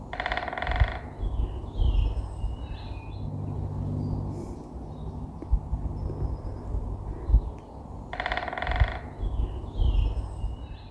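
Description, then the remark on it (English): A great spotted woodpecker drums its courtship song twice, each roll a rapid burst of knocks lasting about a second, with a long pause between, over a low steady rumble of outdoor background noise. “lovely, great spotted woodpecker, and very, well, good sound to hear at the moment. That's their sort of courtship. That is their song, which is amazing.”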